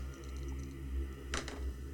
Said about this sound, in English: Roll these dice together.